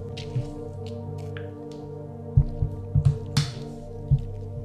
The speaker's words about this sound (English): I'm just going to drink some water, and then we'll get started in 5.